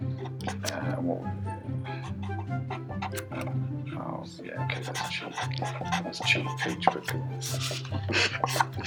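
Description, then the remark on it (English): Sharpie markers scratch and squeak across paper as headlines are written, in quick, irregular bursts of strokes, a busy scribbling texture that runs throughout over a low, steady droning backdrop. “This is the bit where you just hear scruffling of Sharpies against paper.”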